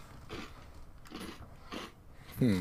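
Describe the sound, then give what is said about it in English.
Quiet crunching of a mouthful being chewed, with three distinct crunchy bites spaced roughly half a second apart, followed by a voice briefly starting at the end. “So keeps crunching.”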